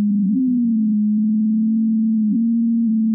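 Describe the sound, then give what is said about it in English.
A steady, low droning hum from melting snow on the Ross Ice Shelf during a January 2016 heat wave, much like a dial tone, holding one pitch for the whole stretch with only slight wavers and a brief blip near the end. “It sounds almost like a dial tone, or maybe an air raid siren.”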